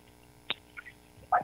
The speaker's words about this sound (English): Can you turn off your radio, please, or whatever you got on? Oh, you know what? I have my foot massager on.